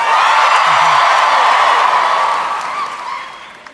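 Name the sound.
audience applause and cheering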